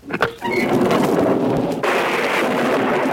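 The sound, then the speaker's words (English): A thunderstorm roars outside, with a sharp crack of thunder at the start giving way to a steady, heavy wash of rain that swells louder partway through. “It's still stormy outside. Open the window.”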